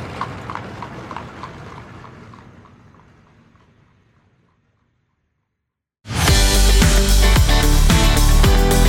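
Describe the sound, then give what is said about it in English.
Horse hooves clip-clop at a steady, even trot, pulling a buggy and gradually fading away. After a brief silence, loud music abruptly starts. “You may not take a horse and buggy to beautiful Lancaster, Pennsylvania on your road trip.”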